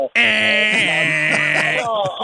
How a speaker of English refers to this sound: I am old enough to remember that while you were doing that, you would listen to that loud ringing that your phone would give. The America Online.